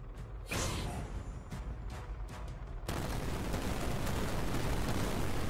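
Several sharp blasts go off in quick succession, then give way to a loud, sustained roar and rumble as a grenade from a grenade launcher lands and explodes inside a research lab. No one speaks.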